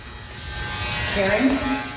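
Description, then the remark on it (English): A door entry buzzer drones steadily for about two seconds as visitors are buzzed into a building, a flat, raspy electric buzz, with a brief murmur of voices rising over it partway through. “Ring it up, ring it again. Oh. Being buzzed in.”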